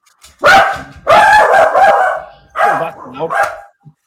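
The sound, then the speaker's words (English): The speaker's own dog barks loudly in three drawn-out bursts, the later ones wavering into higher, whiny yelps before a brief final yip. “There's a dog I hate on. My dog.”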